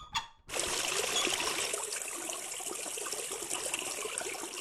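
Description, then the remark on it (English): A steady pour of salt water for a corrosion test starts abruptly after a brief pause and continues as a dense, splashing trickle, holding fairly constant loudness without any talking. “Now, it's time for the salt water test.”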